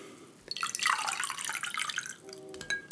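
A little more drink mix pours steadily into a glass with vodka for a couple of seconds, a soft splashing hiss that rises and settles, with a faint ringing tone near the end.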